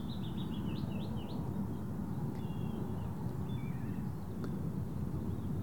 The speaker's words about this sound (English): Some like crows and birds flying around and birds cheeping. So now a bit of manure. I can hear a bit of wind. Sounds like airplanes passing above. The birds cheeping.